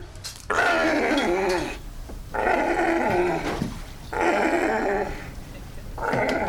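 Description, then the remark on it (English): A sea lion growls in distress with four long, harsh, guttural bursts, each lasting about a second with short gaps between, loud, with no one speaking, as researchers walk into its chain-link enclosure and it spasms and tries to run away. “As the researchers walk into the chain link enclosure, the sea lion spasms and tries to run away.”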